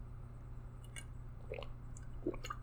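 Someone takes a quiet sip of water: soft wet mouth clicks and two small gulping swallows over a steady low background hum.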